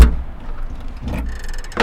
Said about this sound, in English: So we went out to her car, which she had pulled up onto the sidewalk, and she opened up the trunk.